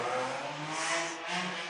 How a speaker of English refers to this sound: Sorry. There's a car mate.